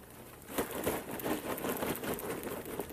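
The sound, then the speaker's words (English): A bag of freshly made, buttery popcorn being opened: a steady run of crisp, crinkling rustles and small tearing crackles, fairly loud and continuous for about three seconds, with no one speaking. “I'm just opening it before we get started.”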